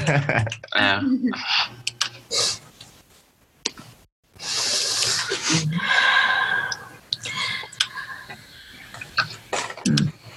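Scattered finger snaps crack out at irregular intervals, crisp, mixed with breathy rustling and soft background noise between them.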